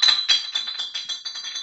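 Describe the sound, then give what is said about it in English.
A bottle gets knocked over: a bright, ringing clink, then a rapid run of lighter rattling taps that slowly fade as it settles. No one talks. “I knocked down a bottle.”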